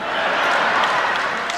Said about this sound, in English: I can see from your applause, sisters and brothers, that you agree with the report.